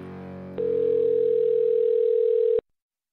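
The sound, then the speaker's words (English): A steady, unbroken telephone line tone hums at a single mid pitch for about two seconds after a low murmur, then cuts off abruptly into silence before a call to the show Beautiful Anonymous connects. “Thank you for calling Beautiful Anonymous. A beeping noise will indicate when you are on the show with the host.”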